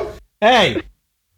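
A huge female dog named Dottie barks twice while guarding, a brief clipped bark followed by a louder, drawn-out one with a rising-then-falling tone, then silence.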